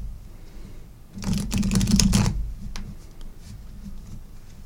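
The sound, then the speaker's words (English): A deck of cards is shuffled: a quick, dense burst of riffling flutter lasting about a second, followed by a few soft scattered taps and card handling noises. No one speaks. “I'm shuffling, and I'm thinking about it.”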